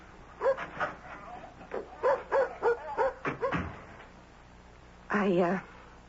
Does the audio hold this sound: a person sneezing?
no